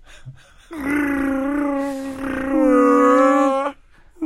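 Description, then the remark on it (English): A person's voice imitates a space whale call: one long, sustained, moaning tone from about 0.7 to 3.7 seconds that wavers and swells, loud, with no other talk. “I'm a whale. Space whale.”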